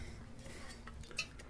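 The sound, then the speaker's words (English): A quick sip from a coffee mug, with one sharp, bright clink of ceramic near the end over a low, steady background hum. No one speaks. “But first off, sip of coffee for the working man”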